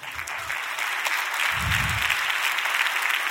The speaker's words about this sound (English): You got that hesitant clap like, is he about to tell us but we're really filthy rags? Not.